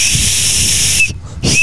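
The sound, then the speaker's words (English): A small toy whistle, of a kind around since 1952, blown hard while turned away from the wind: a breathy, airy shriek lasting about a second, then a brief pause and a second blast, with no talking. “And the whistle has been around since 1952, so this year is its 70th birthday.”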